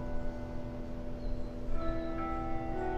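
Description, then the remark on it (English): A church bell rings the hour, signaling 11 o'clock, with a steady, sustained metallic tone, its overtones hanging in the air over a low background rumble, with no talking. “Hold on, let's take a moment to allow the bell to ring.”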